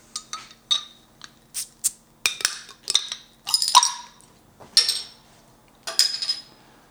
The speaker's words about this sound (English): All right, now as we pour this beer here, I just want to let everyone know that we are drinking it out of a Weizen glass.